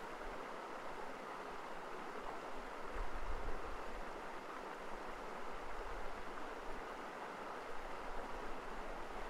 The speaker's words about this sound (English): Today, you are sitting by a mountain lake, enjoying the reflection of snow-capped peaks in the still, glassy water before you. A joyful stream feeds into the east side of the lake, creating a beautiful, calming, natural song for the ears.